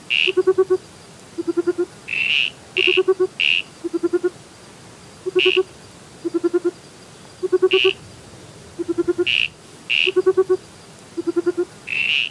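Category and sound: animal, frogs calling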